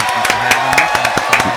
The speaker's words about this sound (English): When Marin's here, the clap sounds fuller. You know what I mean?